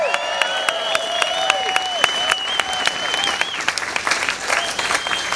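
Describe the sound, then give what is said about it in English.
An audience applauds steadily, dense overlapping claps filling all five seconds at an even, fairly loud level, with a few long whistle-like tones riding above the clapping. “And on behalf of the membership of the Rec, please feel free to applaud that.”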